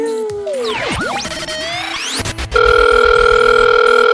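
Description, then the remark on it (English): A sweeping, warbling electronic jumble of rising and falling tones gives way to a loud, steady telephone dial tone that holds to the end, with no one speaking. “And if you are that lady who had sex with me and you did have a good time, please call in and let us know. Call in.”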